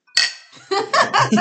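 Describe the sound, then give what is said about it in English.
A sharp clink of glasses knocking together in a toast, ringing briefly before fading, followed by voices and a bit of laughter. “We're the ones drinking. We'll drink for you. Cheers.”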